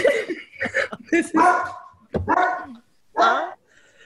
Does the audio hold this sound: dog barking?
yes